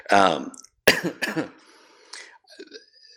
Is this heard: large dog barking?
no